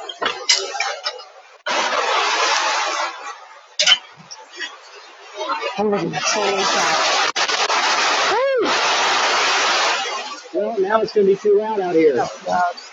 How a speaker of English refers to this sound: Well, now it's going to be too loud out here. That was loud. Yeah, that was loud. That was a bit on the loud side. Can you hear the rain on the roof? Yeah. That is so loud.